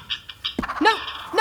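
Harsh bird squawks break out in a quick series of shrill, overlapping cries, like birds squabbling and bickering at one another, with no voices in between, as a bird named Romeo picks a fight with a bird three times his size.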